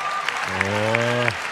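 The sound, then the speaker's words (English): A stand-up comedy audience applauds after a Where's Waldo joke, a dense crackling wash of clapping, while a single voice holds a sustained call over it for about a second in the middle. “Okay, there was just an applause break after her Where's Waldo bit.”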